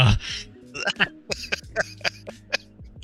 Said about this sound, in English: I like dang. I couldn't even find a way to spin. I'm like, okay, I cough. Couldn't even find a way to spin it. No, I literally tried to press mute, bro. I missed it.